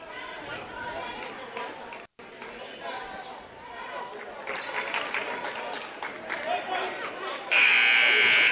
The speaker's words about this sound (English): As there's the buzzer, and we will get set to resume basketball here once again.